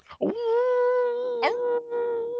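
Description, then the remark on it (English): A person imitates a dog's howl, holding one long, steady, mournful wail for a couple of seconds with a brief breathy catch in the middle, fairly loud. “We'll have a howling good time.”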